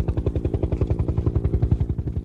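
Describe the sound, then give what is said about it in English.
A Bell twin-engine helicopter passes overhead as it comes back to land on the Dún Briste sea stack, its rotor blades beating in a rapid, steady thudding rhythm, loud and heavy, with no voices. “It's coming right over us now, this Bell twin-engine helicopter, and hopefully we can get it on board again just as successfully as we were able to land 2.5 hours ago.”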